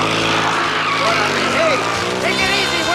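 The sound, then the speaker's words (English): A fancy car from the 38th Street Car Club, license plate Zooter, roars off from a lot as a valet skids away, tires squealing, a loud, steady rush of engine noise and high whining screeches sliding up and down for a few seconds. “The driver escorts his date inside, and the valet skids off in their fancy vehicle.”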